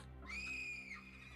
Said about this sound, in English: Who screamed?